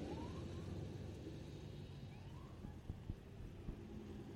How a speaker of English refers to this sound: we got cops coming. Oh, nice. Not sure who he's going after. Here he comes.